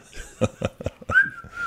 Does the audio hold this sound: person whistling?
yes